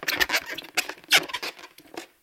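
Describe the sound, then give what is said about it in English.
Balloons rubbing together, giving off a rapid, irregular run of squeaks and rubbery scratches that rise and fall in loudness for about two seconds, with no talking. “Balloons. Oh, how about that noise?”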